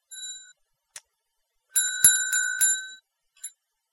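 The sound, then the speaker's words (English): A bright bicycle bell rings: one short ding, a brief pause, then a quick flurry of rapid rings that hum and fade, followed by a final small tap. “I still have the bell, remember?”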